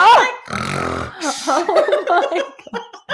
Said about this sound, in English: It said I'd done these really loud snores. So I went in and I pressed it.